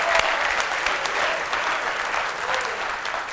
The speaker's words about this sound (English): Oh, give Him a hand clap of praise. Hallelujah.